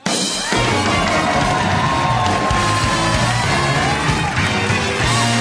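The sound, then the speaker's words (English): A large Comic-Con crowd erupts into sustained cheering and applause as a stand-up comedian is welcomed on stage, with whoops and yells rising over dense, steady clapping that stays loud throughout. “Yes, great crowd.”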